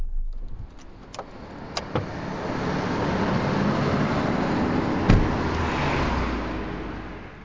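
A car pulls into motorway services, rolling along with a steady, moderately loud rumble of engine and road noise as it slows into a stop, with a few sharp clicks and knocks inside the cabin and no voices.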